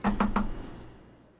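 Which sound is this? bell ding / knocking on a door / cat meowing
knocking on a door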